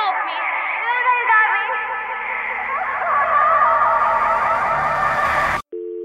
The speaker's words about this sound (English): Getting some feedback. We've got some kind of echo going on.